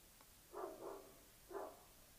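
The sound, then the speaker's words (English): Dogs barking: a quick pair of muffled barks followed by a single bark a moment later, fairly faint against a quiet background with no talking. “Dogs barking.”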